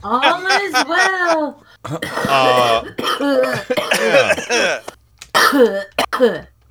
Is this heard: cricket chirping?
no